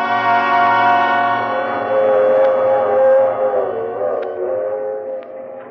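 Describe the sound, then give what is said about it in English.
A train on the move, dominated by a long, loud, sustained horn chord that holds steady for several seconds over a low rumbling undertone, with no voices. “It was on the train”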